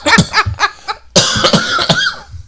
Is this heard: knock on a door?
no